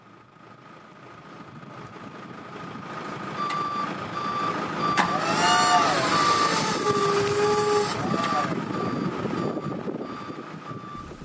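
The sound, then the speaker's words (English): Heavy machinery works, a forklift engine droning with a steady reversing beep and a brief hydraulic whine as it loads heavy rock carvings weighing up to 3 tonnes onto the back of a truck, growing louder midway then easing off. “The heavy rock carvings, weighing up to 3 tonnes, were carried by forklift onto the back of a truck and carefully secured.”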